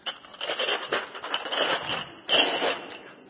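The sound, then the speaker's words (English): Coffee cups clink and scrape against each other after church in a continuous, busy rattle, with a brief louder burst near the end and no voices. “But no, it's the clinking of coffee cups.”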